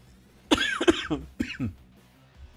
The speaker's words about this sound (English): Can't believe my cough just kicked in. But it's because I tried to breathe and swallow at the same time. You can't do that, folks.